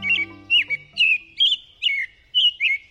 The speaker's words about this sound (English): American robins begin piping up in late winter and then sing all through spring and summer, sometimes well into fall, too. One way to remember their song's pattern is with the words cheerily, cheer up, cheer up, cheerily, cheer up.